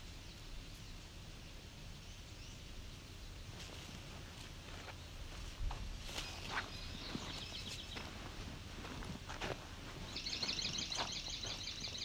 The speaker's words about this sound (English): There's a good swamp sparrow example.